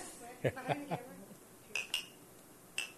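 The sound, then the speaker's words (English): Glasses of Pendleton whisky clink together in a toast, a few bright, ringing taps spaced apart, after a short burst of muffled voices and clatter. Everything is fairly quiet. “Let's get a clink here.”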